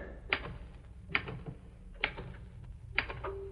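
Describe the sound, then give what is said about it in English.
Typewriter keys, typed fast with all ten fingers, strike in four sharp, evenly spaced clacks, each trailed by a faint mechanical rattle, over a low background hum. No one speaks. “Golly, the way Casey makes this here typewriter fly in using all 10 fingers, too.”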